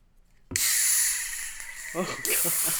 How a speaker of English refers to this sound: Step one, chill the can. Check. Step two, pour hard, which means that you open it and just turn it right 180 upside down.